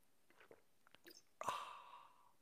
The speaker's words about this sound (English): This is called the simultaneous sip, and it's going to make everything better.